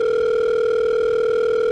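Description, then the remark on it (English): A phone ringtone that mimics an outgoing ringback tone: one steady, unbroken electronic telephone tone, loud, with no voices, from a phone plugged into recording equipment. “My ringtone is the sound of calling somebody.”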